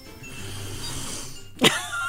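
A sharp sniff through the nose at a tequila mix with musk dissolved in it, a quick breathy inhale that stands out after a stretch of soft, low breathing noise. No one speaks.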